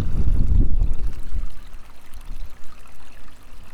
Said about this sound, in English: Some raindrops there.